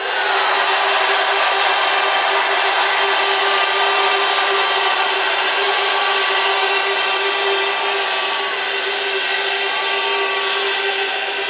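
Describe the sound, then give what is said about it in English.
A large crowd screams and cheers to vote for the UKG All-Stars in round four, the Armageddon round, on a count of three: one loud, sustained roar lasting over ten seconds, with shrill high voices riding on top of a dense, steady wall of noise and no speech. “If you want the UKG All-Stars to win this round, on the count of three, scream, one, two, three.”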